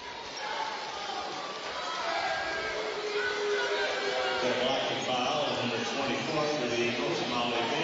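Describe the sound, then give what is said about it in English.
The Columbia City fans in their cheering section at a basketball game against Homestead cheer and shout in a steady, dense roar of many voices that swells slightly after the first couple of seconds and stays loud throughout. “As you can hear, the Columbia City faithful really making some noise in their cheering section.”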